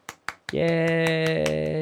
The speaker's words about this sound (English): Yay, you did it. You can double my claps up in post.